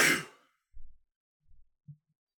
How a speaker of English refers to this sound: Your sneeze was? Yeah. Yeah, of course. I sucked it back in.